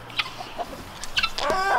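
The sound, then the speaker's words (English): Several egg-laying hens in a chicken coop cluck and squawk during morning chores as eggs are collected, short bursty calls overlapping, rising into a louder drawn-out cackle toward the end, with no one speaking. “I'm headed to the chicken coop to grab the eggs.”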